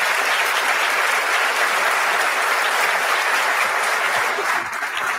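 A crowd applauds loudly and steadily, a dense wash of clapping that holds at an even level for about five seconds before easing slightly at the end.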